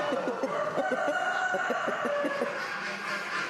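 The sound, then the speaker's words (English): Several show chickens in cages at a poultry show cluck in quick, overlapping bursts, a busy chorus of short throaty calls, set against a steady wash of background noise with no one talking. “a cock in a next-door cage to one of Willie's lads feels he already has had enough of the show”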